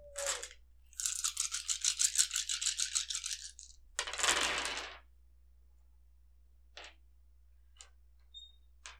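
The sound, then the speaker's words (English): A handful of nine dice rattles rapidly as it's shaken, then spills out in a loud clattering burst, followed by a few scattered clicks as the last dice settle. No one speaks. “2 successes on 9 dice.”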